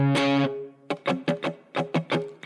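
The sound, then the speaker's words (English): A heavily distorted electric guitar rings out one sustained, buzzy chord, then after a short gap launches into a run of punchy, rhythmic strummed chords, loud. “And I'm gonna kick in the distortion for it.”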